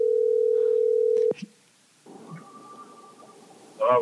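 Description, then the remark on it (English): A steady telephone dial tone hums for about a second as a call is placed to a guest. A sharp click cuts it off, then a faint connecting line tone follows before a voice picks up at the very end. “We're going to try to get him on the phone.”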